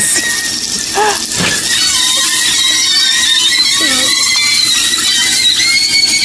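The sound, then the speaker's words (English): Loud, steady sizzling of sausages frying, with high, wavering squeals rising and falling through the hiss like screaming people. The crackle is constant across the whole clip. “So this is a flying sausage sounding like screaming people.”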